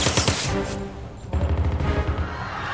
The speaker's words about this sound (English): That was gunfire.